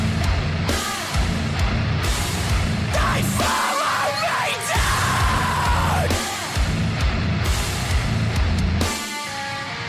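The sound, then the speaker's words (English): A loud, dense hardcore song with harsh screamed vocals over pounding drums and distorted guitars, the heavy rhythm driving steadily with brief breaks before crashing back in. “This guy's voice, man. Talking about screaming.”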